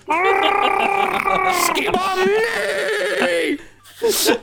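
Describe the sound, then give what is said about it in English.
A person voices the gargly roar of a stallion made of water as it rears up on its hind legs: a loud, sustained, warbling growl lasting about four seconds, wavering in pitch with a wet, bubbling rasp, then a short final burst. “water, and it gets up on its hind legs and roars a gargly roar.”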